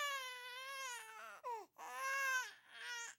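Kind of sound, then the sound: human body sound, child crying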